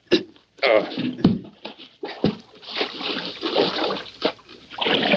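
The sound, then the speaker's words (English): Water splashing and sloshing in a creek in uneven bursts, with a few sharp knocks and thumps mixed in, loud, continuing for several seconds, as a heavy object used for washing rock for gold is lifted into the creek. “Help me lift this thing into the creek.”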